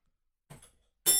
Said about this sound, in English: Hit the bell.